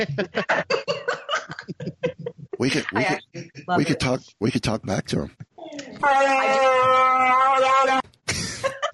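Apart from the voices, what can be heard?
dog whining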